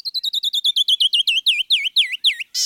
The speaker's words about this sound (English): This is Bird Note, the song of the canyon wren in the American West. It's a cascade of silvery whistled notes, what a musician calls a glissando.